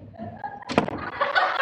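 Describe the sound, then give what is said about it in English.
A door shuts with a single sharp thud partway through, followed by a soft rustling, breathy noise that carries on to the end of the short clip. “The door is just shutting.”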